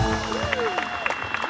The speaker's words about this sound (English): Aviation historian Jonathan Glancy, remembering Concorde's final passenger flight. When the aircraft landed, there was certainly big cheer and applause.